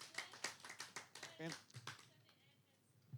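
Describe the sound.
A round of applause from a small crowd at a church service, given as a thank-you, with sharp, fairly rhythmic claps that thin out and fade after about two seconds. A voice briefly calls out partway through.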